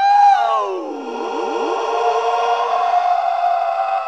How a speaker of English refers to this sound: It just sounds like a police car or something. It's kind of, well, freaky. Yeah. Don't you think? I think it's a bit much. It's like, all right. You know, and it is supposed to be Alec Guinness impersonating a Krayt dragon.